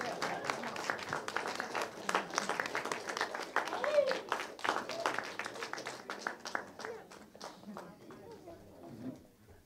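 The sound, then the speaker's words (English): A crowd in a church claps steadily and densely for the whole stretch, a loud, continuous patter of many hands, with voices mixed in underneath and the applause thinning slightly toward the end. “Don't stop clapping now. Don't stop clapping.”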